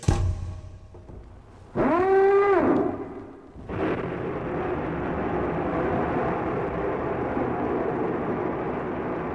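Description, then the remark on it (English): A submarine sound effect sets off: a brief rising-and-falling mechanical whine, then a loud, steady churning rumble that carries on to the end, with no voices. “We're away. Away at last. Oh. And safely ensconced in the emergency submarine with the pizza.”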